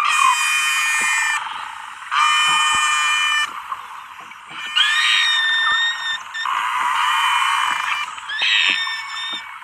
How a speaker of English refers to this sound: Dr. Ridgway doesn't argue that Nosy is saying real words, but these noises are very different from normal beluga songs.